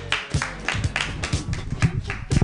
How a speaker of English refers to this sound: Your next comedian, keep your hands clapping, everybody,